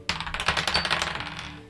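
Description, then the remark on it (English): Several dice clatter across a hard tabletop in a quick burst of overlapping clicks and taps, fairly loud, tapering off as they settle. No one speaks. “Now we roll. Everyone roll.”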